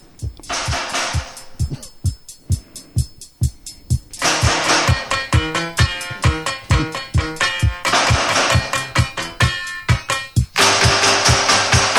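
A recorded cover song plays, all clanking, metallic percussion and plunking piano-like hits on a steady driving beat. It stays loud and busy, with no singing in this stretch.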